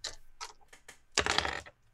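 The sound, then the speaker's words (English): Dice rattle in a few quick clicky bursts, then tumble out in a louder clattering roll lasting about half a second before going quiet, rolled to hit a spellcaster in a tabletop game and coming up 17. No one speaks. “And come on now, dice, don't fail me.”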